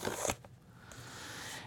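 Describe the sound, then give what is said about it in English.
A short, loud ripping burst as a perforated cardboard tab on a keyboard box is peeled off to start opening it during an unboxing, followed by a quieter papery crackle and a couple of small snaps as the peeling continues. No voices. “There's a little tab with perforations that I can peel off to get the cover started, or the opening going.”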